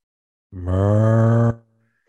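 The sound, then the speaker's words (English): A dog lets out a single loud, low-pitched groaning noise lasting about a second, steady and droning, with no talking around it. “And it's very apropos that my dog make a noise.”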